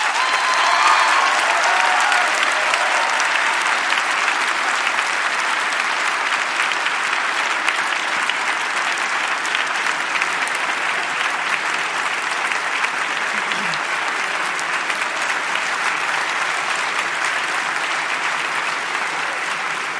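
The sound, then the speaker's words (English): Sustained applause from a large debate audience after a speaker for a motion on Saudi Arabia, a dense, steady wash of clapping that stays loud and even for the whole twenty seconds with no pauses or talking over it. “Your hands will get tired if you clap too long for every speaker.”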